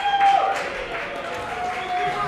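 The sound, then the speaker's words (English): An audience applauds with a steady wash of clapping and crowd noise, while a thin, sustained whistle-like tone cuts in briefly near the start and again toward the end. “It is applause.”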